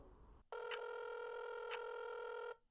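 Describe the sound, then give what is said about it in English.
A phone dialed on speakerphone rings out: one steady, buzzy electronic ringback tone lasting about two seconds, then cutting off, with no voices. “I dial my phone, putting the phone on speaker so I can keep cleaning.”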